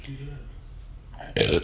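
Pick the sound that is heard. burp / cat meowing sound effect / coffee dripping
burp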